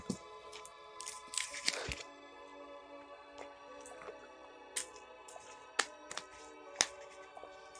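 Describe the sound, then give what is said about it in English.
Someone takes a drink of water: quiet wet sips and swallows with scattered small clicks and smacks, spread out over several seconds with no talking. “Man, I need a drink of water.”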